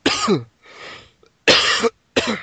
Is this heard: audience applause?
no